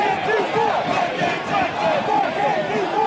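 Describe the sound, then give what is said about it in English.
A large crowd of protesters chants and shouts together while masked men smash windows, many voices merging into a loud, steady roar with rising and falling yells throughout. “So when masked men started smashing windows, protesters objected and stepped in to stop them, taking out this man first, then tackling another who'd stepped in to finish the job, while the crowd chanted.”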